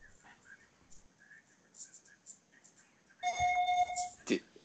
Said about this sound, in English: My phone's going off. I should silence that.